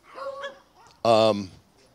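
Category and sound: animal, dogs barking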